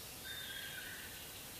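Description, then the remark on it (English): A faint morepork (ruru) owl call, a brief hooting note held for under a second against a soft background hiss, with no other sounds around it. “Moorpork. Ruru.”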